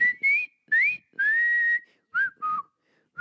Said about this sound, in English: I mean, I like that song and I like whistling it, but but I don't think I would like that movie.